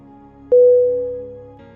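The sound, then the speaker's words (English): A temple gong is struck once, a sharp hit that blooms into a steady, mid-pitched ringing tone and fades slowly, with a low, constant hum underneath throughout. “Examples: gong sound, temple gong.”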